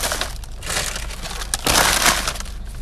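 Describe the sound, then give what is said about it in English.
Loud, continuous crumpling and crinkling of trash in a car being bundled up, with irregular bursts of crackling and a sharper crunch partway through, no voices. “Let me package up my trash here.”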